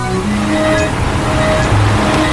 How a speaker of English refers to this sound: You're now riding on a boat.